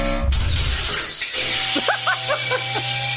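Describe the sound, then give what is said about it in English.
A gate-opening sound effect: a low thud, then a loud, airy hiss over a steady low hum, ending in a series of short, warbling chirps that rise and fall in pitch. No one speaks. “This is gate open.”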